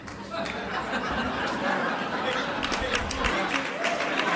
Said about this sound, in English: an anemic sort of response where like there's like four people like chuckling and three people slapping their fucking palms together